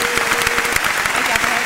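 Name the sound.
round of applause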